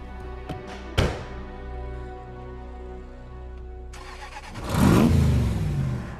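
In a film scene, Nick Fury's car engine catches with a sharp burst, idles with a steady low hum, then revs up into a loud, swelling roar as he drives away. No one speaks.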